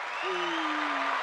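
A burst of dense, steady applause celebrating legal marijuana in New Jersey, many hands clapping in a continuous wash, with a single drawn-out low vocal tone sliding gently downward beneath it.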